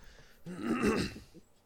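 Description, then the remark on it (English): A voice imitates a sniffling cry: one wavering, whimpering sob lasting about a second, rising and falling in pitch, then a short faint sniff at the end. “Can you give me like a sniffle? Like a sniffle cry?”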